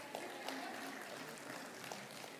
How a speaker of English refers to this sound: Yeah, I figured it'd be that kind of applause too.